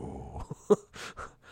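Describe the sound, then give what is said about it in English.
A voice imitates a low, rumbling growl, fairly quiet, in a few short throaty bursts with breathy noise over about a second and a half. “And he, instead of from the scream, he goes down to a growl as they're like, oh.”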